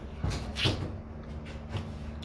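A door being handled as someone tries to lock it: a few soft knocks and rattling clunks at an uneven pace, like someone fiddling with a latch, with no voices.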